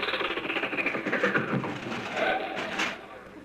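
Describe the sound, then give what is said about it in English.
A car engine idles with a steady, rough rumble while the car is stopped at a red light, holding at an even, moderate level for a few seconds with a slight sputtering texture and no voices. “Oh, stop the car. There's a red light.”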